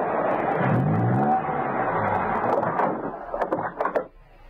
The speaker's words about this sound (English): He drove up to the house and parked his car conveniently near the tree.